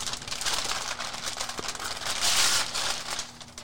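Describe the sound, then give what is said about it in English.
Christmas wrapping paper being torn open and crinkled, a steady rough ripping and rustling that lasts several seconds with no pauses, loudest near the middle, with no voices. “So we have Christmas paper. Dude, rip it.”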